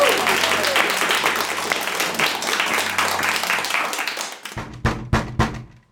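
A dense burst of audience applause, many hands clapping steadily for about four seconds before thinning out, followed by four or five sharp, separate knocks or thumps at the end.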